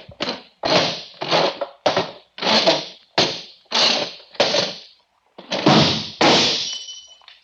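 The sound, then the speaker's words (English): A chair that someone is sitting in scrapes and bumps across a hard floor in about eight short, loud jerks, followed by a heavier crash with a bright, ringing shatter as a drinking glass is knocked off a table onto the floor and breaks. “I'll squirm my chair over there and knock the glass on the floor to break it.”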